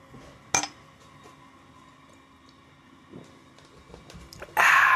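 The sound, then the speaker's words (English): A single sharp clink of glass rings out early, followed by a faint lingering tone and small clatters, then a burst of rustling noise near the end. No one speaks. “I'm almost done on this one. Cheers.”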